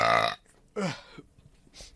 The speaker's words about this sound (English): Sorry, I'm just going to burp.